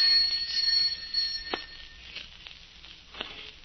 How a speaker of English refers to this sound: Answer the doorbell, will you? Of course. Right away, madam.